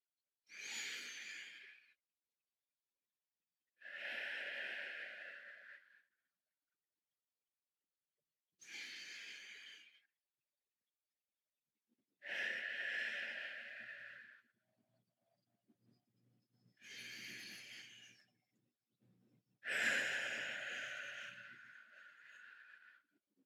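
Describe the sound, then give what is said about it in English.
Slow, deep breaths drawn in through the nose and let out again, six long airy swells with short pauses between them, clear with no talking. “In through your nose. And then out, breathing out any stress, anxiety, worry, anything you don't need, just exhale that.”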